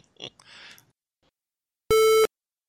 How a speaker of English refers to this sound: I'm actually going to grab my cell phone just in case that was someone trying to actually call me. That actually may have been my wife.